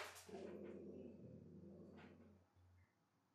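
A dog lets out a deep, drawn-out bark that trails into a rough, rumbling tail, heard alone and fairly faint, with no one talking.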